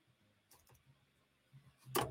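A few soft, scattered clicks on a computer keyboard while typing the words 'El Elyon' for an Instagram post, quiet, ending with one sharper, louder keystroke; no one speaks.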